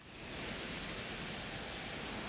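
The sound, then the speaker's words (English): Steady rain falls in a dense, even hiss with a patter of drops on a surface, fading in quickly and then holding a constant, moderately soft level. No voices. “This week you will hear a transformative rain performance unifying many seasons of the life stage.”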